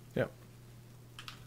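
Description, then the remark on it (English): A short burst of voice, then a few quick, faint keyboard clicks as someone types a hashtag into a post, over a steady low electrical hum. “And as I'm typing that, it's actually suggesting that as a campaign.”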